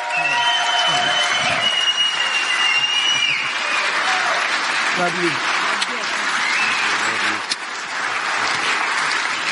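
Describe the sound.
A crowd claps loudly and steadily for several seconds, with whoops and shouted cheers rising over the dense applause; a voice briefly calls out amid the noise.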